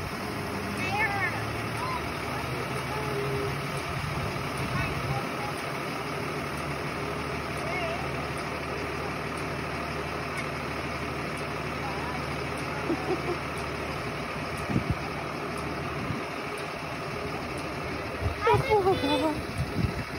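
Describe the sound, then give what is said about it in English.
A school bus idles at a long driveway as it drops a child off, its engine a steady, low diesel rumble that holds constant throughout, while muffled voices occasionally come through in the background. “patiently for the bus. There it is, Bubba.”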